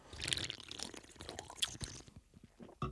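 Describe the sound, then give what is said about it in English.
Someone sips a fizzy canned ginger beer, like a Moscow Mule in a can, with a dense crackle of carbonation and liquid sounds for about two seconds, then quieter swallowing and a short final burst. “Well, I mean, it's obviously like a Moscow Mule in a can.”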